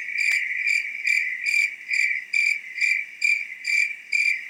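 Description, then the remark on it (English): A recording of cricket chirping plays on its own, a steady high-pitched trill pulsing in regular bursts about twice per second, clear with no voices. “I just was playing cricket noises because I was bored.”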